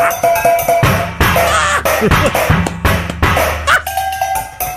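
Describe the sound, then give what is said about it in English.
Rapid, loud drumming on recycled pots and pans set up as a drum kit at a home: dense clanging hits in a busy rhythm, with metallic tones ringing on between strikes and deeper thuds underneath. “Set them all up on his drum kit, you know, different drums, and then he started drumming.”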